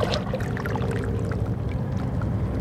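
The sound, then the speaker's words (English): Soft, continuous lapping of calm, flat, slightly rippled sea water at Kitts Beach in Vancouver on a calm, windless, slightly overcast and mild January morning, a steady low wash with faint scattered splashes and trickles, unbroken, with no voices. “The ocean is flat, just a bit rippled in places.”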